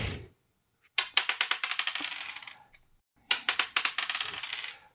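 Two quick bursts of dice clattering and rattling across a hard table, each a rapid series of sharp clicks that tumble and settle, with no talking; the dice are rolled for sneak attack damage.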